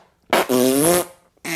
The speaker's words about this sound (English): I think everybody knows what our page turning sound is going to be. Fart.